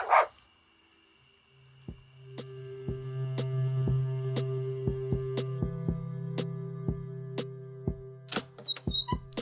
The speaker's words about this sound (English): What? It's just a puppy? I thought there was a person chasing me. Well, you are a cute puppy.